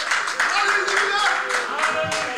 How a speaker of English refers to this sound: Oh, let's give Jesus a hand and clap of praise.